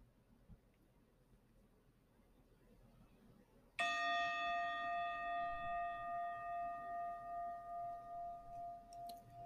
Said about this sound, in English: When you hear the bell, you are going to open up your eyes and smile.